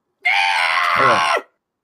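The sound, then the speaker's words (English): A person lets out a loud, raspy, monstrous scream, imitating the shriek of a striga, held for just over a second before cutting off abruptly. No talking accompanies it. “We see the lid of Ada's tomb scrape open, and we hear the Striga scream.”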